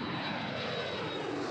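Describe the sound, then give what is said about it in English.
A steady, continuous drone of airplane engines, a broad even hum that holds at constant loudness throughout, with no voices or other sounds. “As they boarded separate flights, the hum of airplane engines resonated with the decisions awaiting them on solid ground.”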